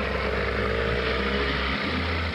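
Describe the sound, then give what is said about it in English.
A motorboat engine drones steadily and loudly, a continuous low rumble with a broad wash of water noise, its pitch dipping briefly near the end, as a family and their dog leave by boat through fast-rising floodwater in 1982. No one speaks. “With the water rising fast, Marilyn, her husband, one of their daughters, and the family's dog all got in a boat to leave.”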